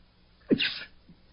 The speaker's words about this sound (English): Oops, got a sneeze.